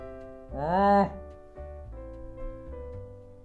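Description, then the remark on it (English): A cow gives one loud moo that rises in pitch and breaks off after about half a second, followed by a lower, steady droning tone with no talking. “Can I take the cow? He's really nice.”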